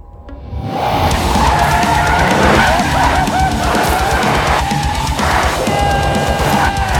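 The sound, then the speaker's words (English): In a film scene, a car's tires squeal loudly and continuously as young Cage whips it around in tight circles in high school, the screech wavering over a steady engine roar for several seconds, with no talking. “But it's got that one random scene that feels very Brian Taylor-ish, where it's the young Cage whipping around in circles in his car in high school, getting titties slapped in his face, having the time of his life.”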